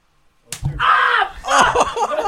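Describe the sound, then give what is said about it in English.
After a brief silence, a single sharp hand slap cracks against skin, followed immediately by loud pained yelling from the person who was hit. “Taking off so you get a better slap.”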